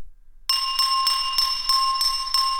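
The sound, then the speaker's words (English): A spoon taps a water glass in a quick, steady series of about seven strikes, each adding to a clear, sustained ringing chime that hangs in the air, fairly loud. “Draco Malfoy resumed tapping his spoon against his water glass, creating a clear, ringing chime.”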